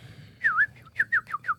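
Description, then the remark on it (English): A person whistles a short birdlike tune imitating a small songbird: a swooping trill followed by four quick chirping notes, clear and close with no talking. “The little morning birds. I don't know what the hell they're called, but the mini cuckoos? No. They're just like the finches?”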